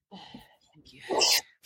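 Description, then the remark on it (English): A single sharp sneeze bursts out loudly after a brief breathy intake, with a hiss across the highs. A faint voice murmurs just before it. “Bless you.”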